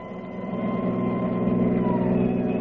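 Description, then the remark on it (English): An ambulance siren wails steadily over the low, heavy drone of a vehicle engine, fairly loud, continuing without a break and with no voices. “Many's the time Kildare rode with me in this ambulance.”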